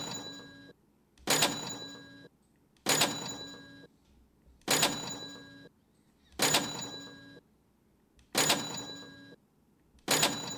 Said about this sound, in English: You know why I'm hitting the cash register? Because we're spending money? No, because every time that I hit this, that somebody else that's quit listening.